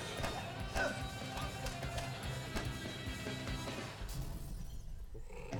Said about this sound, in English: Why was it a glass noise? It's the only sound effect they had.